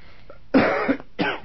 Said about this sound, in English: Oh, I can cough just as well standing, thank you.